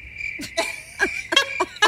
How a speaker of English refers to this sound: Where's the crickets? Yeah. Here, we wait. Need crickets for that, for sure.